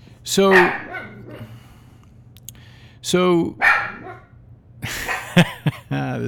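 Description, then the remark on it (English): A female dog named Willow barks in short, sharp bursts because she heard a sound. There are a few sharp barks spaced apart with pauses, and a person speaks briefly between them over a low background hum. “And hang on, she's still barking at me.”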